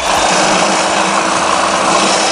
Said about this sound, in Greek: Ηλεκτρικό ψαλίδι μπορντούρας.